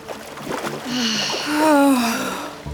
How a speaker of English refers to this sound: We'll just dip our toes in the water. I'm diving in.